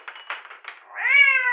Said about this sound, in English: Meow. Not now, Sans.